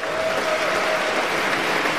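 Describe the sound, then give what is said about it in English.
Steady, dense applause from an audience at the opening of the re:publica conference fills the whole two seconds, a thick even clatter of many hands clapping with no speech over it. “And now the four who did everything in the last year with a giant team, and we want a big round of cheers for”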